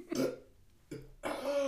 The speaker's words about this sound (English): I'm going to burp again.